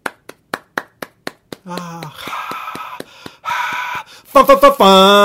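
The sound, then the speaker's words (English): About seven steady, evenly spaced hand claps from a single person, followed by loud voiced whoops and cheering that one voice makes to imitate an applauding crowd, celebrating three Canadian cities named among the top 10 most livable cities in 2018. “Round of applause.”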